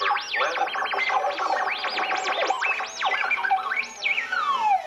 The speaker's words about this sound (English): Too bad we get so much static.